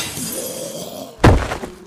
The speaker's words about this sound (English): You hit him with the actual fryer. Smart. If the metal doesn't end him, the grease will.